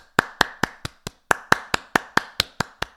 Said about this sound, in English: let's just give a round of applause for Dumbledore's army